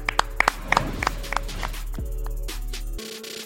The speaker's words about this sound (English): Clap it up. Clap it up.